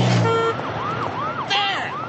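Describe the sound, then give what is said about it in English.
A city siren sound effect wails in quick, repeating rising-and-falling sweeps over a steady wash of traffic noise, loud and continuous throughout, with no voices. “Simple sound effect, and you've got the city.”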